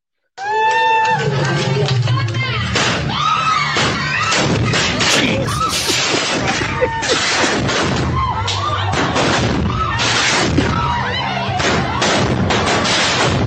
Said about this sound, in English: Sounds like somebody mistook the fireworks for some sparklers.